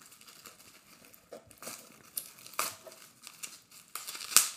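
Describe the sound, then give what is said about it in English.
Crinkly plastic packaging being wrestled and torn open by hand without scissors, with irregular rustling bursts and a few sharper ripping snaps, no voices. “The struggle is real. Okay. I should have brought scissors with me.”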